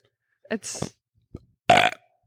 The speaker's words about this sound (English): That's my coffee burp.